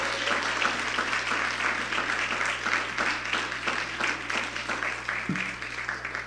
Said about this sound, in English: Let's put a huge round of applause for them.